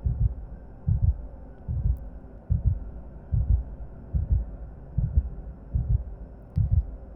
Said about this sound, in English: Feel her heartbeat. Listen for it.